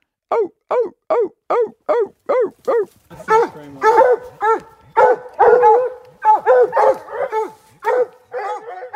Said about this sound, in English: And then the fourth sequence is the dog begins to tree. That's when the dog locates the coon and the dog begins an excited series, typically of chops.